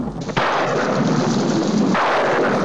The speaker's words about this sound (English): And the guy gets struck by lightning in the scene again, so 67 times.